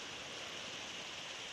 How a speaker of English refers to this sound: Father, the sound of the rain just pounding on this building is just it's just ministering to me so much. It might be loud, maybe a little distracting, but Lord, it's really blessing my socks off right now.